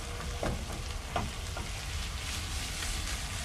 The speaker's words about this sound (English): Love to hear that sizzle, guys. That sizzle means that it is cooking. That Maillard reaction. Those beautiful brown bits.